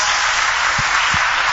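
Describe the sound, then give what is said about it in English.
Steady applause from a church audience, a dense wash of many hands clapping at once, loud and continuous throughout, with a couple of dull low thumps midway. “Would you want to clap for these ones?”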